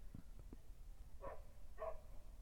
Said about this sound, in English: Puppy barking in the distance.